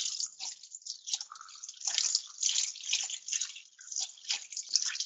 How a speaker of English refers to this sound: Noisily. Yes. With water. Splashing water. That makes it easier.